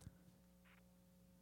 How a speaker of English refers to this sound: Ringing.